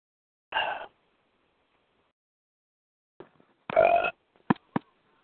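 Two loud belches separated by a few seconds of quiet. The second is longer and deeper, followed by a couple of quick, sharp gulping sounds.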